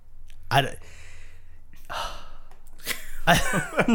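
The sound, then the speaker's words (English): Loud heavy breaths right into the microphone: a sharp gasp, then a long breathy exhale, then a drawn-out rasping sigh, with short pauses between them. “Just stop breathing like that for a second.”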